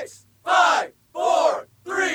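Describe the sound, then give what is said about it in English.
A crowd booing sound effect in three loud, sustained bursts of many voices, each about half a second long and separated by brief pauses. “Here's the crowd disgusted.”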